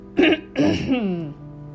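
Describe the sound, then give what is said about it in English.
A person clears their throat, two rough, gravelly bursts followed by a brief voiced rumble that trails off, with no words spoken. “Excuse me as I clear my throat.”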